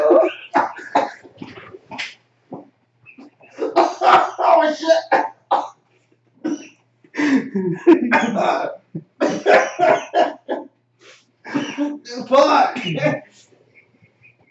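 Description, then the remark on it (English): A loud coughing fit after a person chokes on a drink: repeated harsh, sputtering bursts with throat clearing, broken by short gasping pauses, while the person mutters a brief exclamation between coughs. “Oh, I choked on my drink before I drank.”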